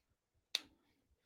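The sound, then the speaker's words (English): A single sharp smack as a flipped coin is caught, with a short ringing tail, standing alone against near silence. “I grabbed my jar of coins.”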